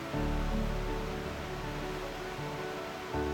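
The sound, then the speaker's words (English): Ocean waves pound the shore in a continuous, fairly loud roar with a deep rumbling undertone, the surf washing in steadily with no voices. “Listen to the waves pounding against the shore.”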